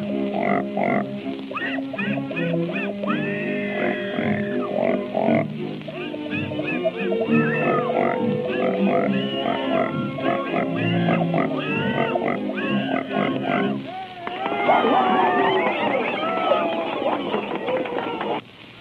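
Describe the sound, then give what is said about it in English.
Two pigs billed as singing pigs squeal and grunt almost nonstop, their pitched cries layered into a dense, tuneful jumble before a burst of higher, wavering squeals near the end. “Presenting Mr. and Mrs. Patty Pig.”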